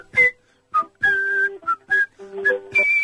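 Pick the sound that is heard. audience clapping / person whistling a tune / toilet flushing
person whistling a tune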